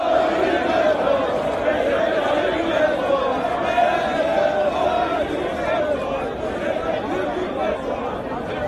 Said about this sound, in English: Cheering supporters of Turkish President Recep Tayyip Erdoğan took to the streets in Ankara this week as his Justice and Development Party, AKP, defied almost all predictions and polls to win back a parliamentary majority it lost last June.